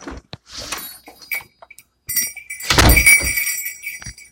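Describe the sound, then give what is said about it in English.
A door is handled with a few soft clicks and rattles, then swings open with a solid thunk as a string of three jingle bells on the doorknob, kept on the door every Christmas, rings out brightly and shimmers for over a second. “I have jingle bells on my doorknob. It's this string of 3.”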